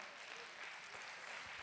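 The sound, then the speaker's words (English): An audience claps their hands together, a dense, steady wash of overlapping claps with no spoken words, sustained throughout at an even, moderate level. “Come on, clap your hands.”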